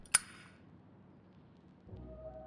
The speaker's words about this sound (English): and the unmistakable sound of my old man's Zippo lighter with its click and its ring and its snap.